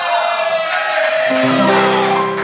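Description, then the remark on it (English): Sparse audience applause at the Coalition Theater on a Friday evening as the evening's host is welcomed to the stage: a thin scattering of claps over a steady crowd murmur, with a few whoops and shouts mixed in, fairly loud and continuous throughout. “Wow, what a rousing smattering of applause that was.”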